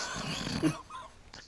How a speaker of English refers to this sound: Hurry up. She's wheezing. Ah. She's gasping for air.